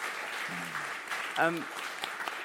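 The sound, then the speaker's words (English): Steady audience applause after a talk about trees, a dense, even patter of many hands clapping throughout, with a couple of brief voiced calls rising over it partway through. “Round of applause.”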